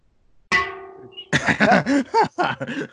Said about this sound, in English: Dude, you're always showcasing that new gong you got, man. I appreciate it.